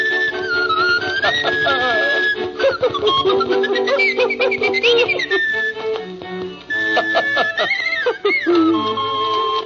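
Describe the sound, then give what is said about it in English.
Cuckoo bird music: a whistled, sliding melody rising and falling over busy, steady instrumental backing, loud and continuous for about ten seconds. “All right, though, would you please give me my cuckoo bird music?”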